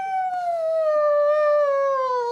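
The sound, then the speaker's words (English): A voice imitates a balloon letting out air: one steady, high, whiny squeal lasting a couple of seconds, slowly sliding lower in pitch and staying loud throughout. “And then he makes a weird, like, balloon releasing air sound.”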